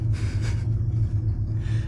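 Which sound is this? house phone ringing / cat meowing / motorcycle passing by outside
motorcycle passing by outside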